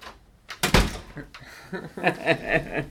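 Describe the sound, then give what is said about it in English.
A door is opened with a sharp creak and a heavy thunk near the start, followed by a rattling, scraping movement as it swings; fairly loud, with no talking. “Look at this, and I'm gonna open it. Look how it sounds.”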